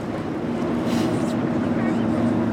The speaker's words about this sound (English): We board the boat, a 56-foot vessel affectionately called the Salty Lady. And soon enough, we're cruising through the bay with the city at our backs and the Golden Gate Bridge looming large in front of us.